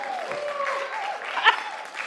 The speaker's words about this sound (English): I did nothing and got applause. That's really exciting.